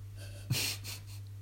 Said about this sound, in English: Wait, can I have another sip of drink? Is everyone going to go silent?